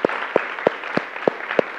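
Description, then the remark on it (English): A crowd applauds military veterans in a dense, steady wash of clapping. Six sharp, evenly spaced claps stand out above it in under two seconds. No one speaks. “Can we just give them a round of applause, huh?”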